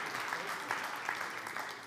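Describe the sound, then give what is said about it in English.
A crowd claps steadily, a dense wash of many hands giving sustained, fairly loud applause that holds an even level throughout. “Come on, I deserve a round of applause for that.”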